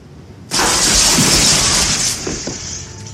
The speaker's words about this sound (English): It's got the crash of the window.